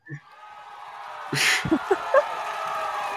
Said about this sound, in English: Do you like the cheer? Is the cheer helpful?